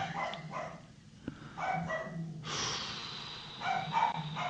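A female dog barks several times in short, uneven bursts, with snuffly breathing and a steady background hiss between the barks. No one speaks.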